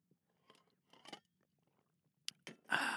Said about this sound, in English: But before we get there, I'm going to take a sip of this fine, high-quality H2O.